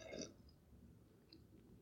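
A quick sip of water: a short wet slurp and gulp right at the start, followed by near silence with faint room noise.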